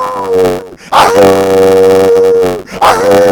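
A neighbor's old dog next door across the fence barks and bays in long, drawn-out cries, two loud sustained calls separated by a brief pause, with no one talking.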